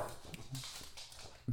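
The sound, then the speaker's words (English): A dog whimpers softly in short, uneven bursts, with faint rustling and a quick low thump at the end. “He's anyway, well, the dog's settling down.”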